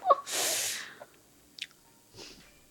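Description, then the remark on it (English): Chewing on a chicken foot: a loud, breathy rush of noise opens, then a few short, wet clicks and soft crunches follow sparsely. No one speaks. “I'm enjoying watching you eat, though. I wish everybody at home could try a chicken foot.”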